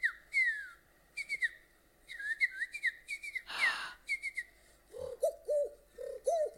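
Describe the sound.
A man imitates animal calls he grew up hearing in South Africa: quick high whistled chirps and warbling trills, a sharp breathy rasp in the middle, then a run of lower, dove-like cooing notes. No talking.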